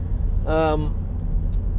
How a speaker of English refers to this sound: let me get past this big truck. There he goes.